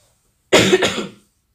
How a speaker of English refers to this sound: like, my voice is just, oh, there's so much phlegm in my throat right now. Hello. Let me just cough because I can't.